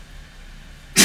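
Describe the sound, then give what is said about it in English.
After a second of quiet room hiss, a single sharp sneeze bursts out loud at the very end, abrupt and breathy. “Bless you.”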